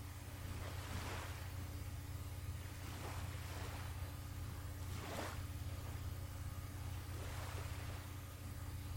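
Ocean waves wash ashore in slow, steady surges every couple of seconds, each swelling and fading over a constant low rumbling hum. No one speaks.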